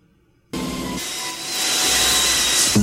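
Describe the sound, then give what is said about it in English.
A vacuum in a movie clip suddenly roars to life, sucking a ball up into a mask as they try to get the ball back, with a loud, steady rushing hiss and a thin high whine riding on top, building slightly before a brief clunk at the end. “They suck it up into the vacuum.”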